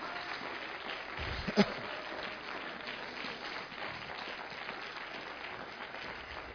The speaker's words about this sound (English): I'll give him a hand clap of praise.